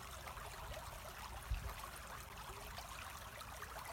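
Steady, gentle babble of a flowing stream, a continuous soft rush of water with light trickling detail and a brief low thump about a second and a half in. No voices.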